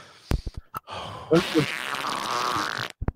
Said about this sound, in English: Speaking of fart noises